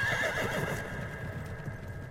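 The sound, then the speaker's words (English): A horse gives a single high, wavering whinny at the start, loud, then it fades into a steady outdoor hum with soft, irregular hoof thuds underneath. “So, yeah, what a beautiful, beautiful horse.”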